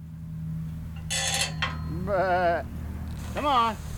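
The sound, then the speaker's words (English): Two wavering bleats ring out from a herd of white-faced sheep, a breed prized for pure white wool, here looking oily, sooty black, on a small acreage just south of Ponca City, Oklahoma. One comes around the middle and another near the end, over a low steady rumble with a couple of brief rustling bursts before them. “John Hoke runs a herd of white-faced sheep, a breed prized for pure white wool.”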